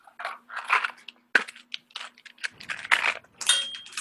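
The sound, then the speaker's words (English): Two six-sided dice, rolled for damage in a tabletop role-playing game, clatter and tumble across a hard table in a quick run of sharp, bright clicks and rattles, fairly loud, settling with a few scattered taps. No one speaks. “That's my dice.”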